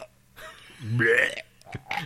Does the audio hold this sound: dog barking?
no